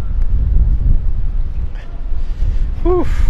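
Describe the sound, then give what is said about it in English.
Strong wind buffets the microphone outdoors in downtown Providence as it starts to rain, a loud, continuous low rumble with gusty surges, and a brief rising-falling tonal squeal near the end. “It is amazing how much the wind is.”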